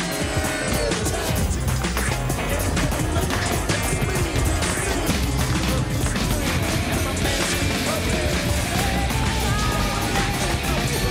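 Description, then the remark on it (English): A dense, continuous music mashup blending several 1990s party songs, with steady driving beats, layered vocals and synths packed together at constant loudness throughout. “How Many 90's Party Songs Can You Pick Out Of This Mashup??”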